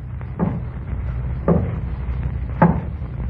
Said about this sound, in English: We were sitting there eating. And there was a knocking at the door.